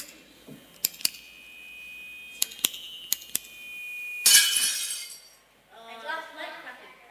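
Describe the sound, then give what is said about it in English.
Several bright glassy clinks ring out, then a loud crash as a glass plate shatters into a brief spray of shards; a voice starts talking just after. “Glass shattering, glass. What did you say? Plate shattering? Yeah. Plate smashing.”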